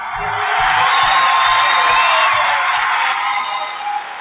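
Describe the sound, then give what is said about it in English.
A large crowd at a rally cheers and roars continuously for a speaker, a dense wash of shouting voices that stays loud and steady for the whole few seconds, with a few whoops poking out near the end. “Nonetheless, the man is on a mission, and no one can deny that this polarizing figure sure knows how to fire up a crowd.”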